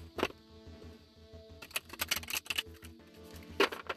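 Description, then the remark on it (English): A deck of cards being shuffled for a reading, with a quick papery snap, then a rapid flurry of crisp riffling clicks and a final sharp flutter, over a soft steady musical hum. “So I'm still shuffling.”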